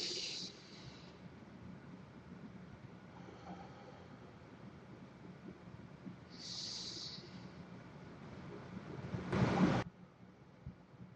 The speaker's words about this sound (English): And what I like to do is I like to breathe in through my nose, hold it for a second, and slowly breathe out through my mouth, concentrating on my breathing like this.